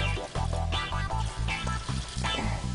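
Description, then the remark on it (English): A loud, steady sizzle and crackle of a hot pan of cooking carrots bursts up as a little splash of water hits it, hissing continuously with uneven pulses and no voices. “So I'm just going to add a little splash of water.”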